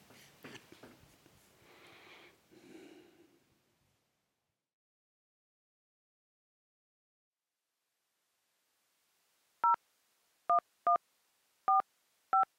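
A telephone number obtained from the local heritage society in Heusden is being dialed: five crisp touch-tone beeps at slightly uneven intervals, clear, following a stretch of rustling handling noise and then several seconds of silence.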